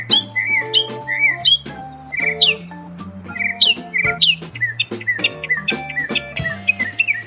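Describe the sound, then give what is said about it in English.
A northern mockingbird sings a rapid, varied medley of chirps, trills and whistled phrases imitating other birds, bright, over a low steady background hum. “So a single mockingbird can use up to or over 200 different songs, which I think is pretty fascinating, to learn the songs of these other birds.”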